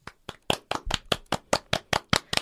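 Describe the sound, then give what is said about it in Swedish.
Applause made of sharp, evenly spaced claps, about eleven in a steady rhythm, loud and crisp with no voices. “Vanliga tacksamhetsgester är applåder.”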